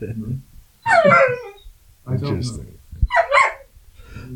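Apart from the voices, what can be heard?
dog barking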